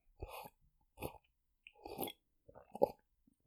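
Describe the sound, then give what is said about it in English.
Four wet gulping swallows of wine, spaced roughly a second apart, each a short throaty burst of someone drinking in quick sips with quiet pauses between. “It's probably better to just take one big sip and call it 10.”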